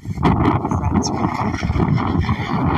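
Wind blows steadily outdoors while someone waters a rose bush and a serviceberry, a loud, continuous low rumble that buffets the microphone in uneven gusts for the whole stretch, with a faint hiss on top.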